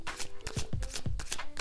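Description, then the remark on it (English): Crisp riffling of a Modern Witches Tarot deck being shuffled, a rapid flurry of papery flicks and soft low thumps as the cards slap together, with no talking. “So, of course, we're going to stop shuffling in the deck and we're going to split and pull from the middle.”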